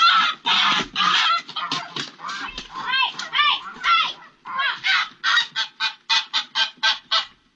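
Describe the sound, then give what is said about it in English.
A goose honks loudly and repeatedly, a long run of harsh, nasal calls that speed into short rhythmic bursts toward the end, with no other voices. “The goose is like, holy crap, did you see what just happened to me?”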